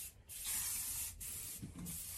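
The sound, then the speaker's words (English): An aerosol can of ultra matte spray paint hisses in a steady, bright spray as it is used on a truck, broken by a few brief pauses, with a slight sputtering toward the end as the can runs out. No one speaks. “Alright, so this can is done. Because I've been using it to go around the rest of the truck.”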